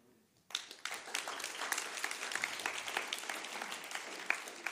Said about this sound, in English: Can I ask you just to give one more round of applause? Because yes. Doing this in a second language, and I think you did a brilliant job.